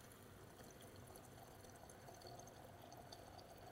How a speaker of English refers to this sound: So what we're going to do, we've got 12 grams of coffee. I'm going to add water filled up to the bowl, which is around about 180 mils of water. We're going to leave it for 4 minutes, and then we're going to break.